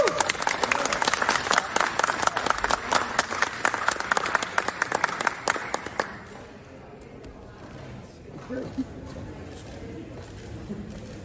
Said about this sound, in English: And then people started clapping, and they looked really appreciative, actually,